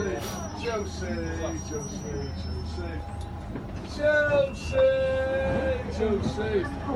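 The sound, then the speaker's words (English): A busy underground subway train rumbles steadily along the rails, with high metallic wheel squeals rising midway, while muffled voices murmur in the background. “You mean a subway? Hey, come on. Well, the train's going to stop, right?”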